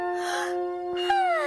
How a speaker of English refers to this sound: The little girl yawned.